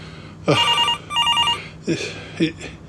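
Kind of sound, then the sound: household object, telephone ringing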